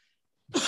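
A single sharp sneeze bursts out after a moment of near silence, loud, with a broad hissing spray of noise.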